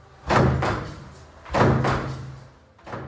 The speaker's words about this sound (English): At which point, we're going to need a revolving door sound effect.